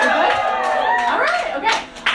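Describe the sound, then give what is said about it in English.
A small audience claps briefly to show they are users of the Diva Cup, scattered hand claps overlapping in a quick patter, with voices and what sounds like cheering mixed in. “Any clap it up?”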